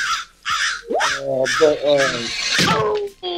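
A crow caws loudly, letting out five or six harsh, raspy calls in quick succession with only brief gaps between them.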